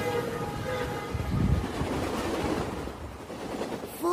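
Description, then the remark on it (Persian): A train rumbles past, a steady dense roar of wheels on rails with faint rhythmic clatter and a brief whistle-like tone, swelling slightly in the middle before easing off. “چه با عجله. کجا میرن اینا؟ حتی راننده قطارم اینو نمیدونه.”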